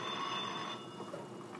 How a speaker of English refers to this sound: Now he's hiding because the phone is ringing, which means someone will come answer it.